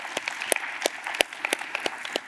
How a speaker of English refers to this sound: Way to start that clap